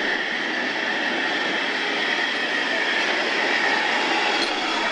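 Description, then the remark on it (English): The locomotive Leander, hauling a train of 1950s red carriages on a circuit from Blackpool via Preston, Clitheroe and Hellifield and pausing for signals, makes a steady, unbroken roar of rumble and hiss, with a faint high squealing tone running through it and no voices. “It's pulled its train of 1950s red carriages around the circuit from Blackpool via Preston, Clitheroe and Hellifield, and is pausing for signals here”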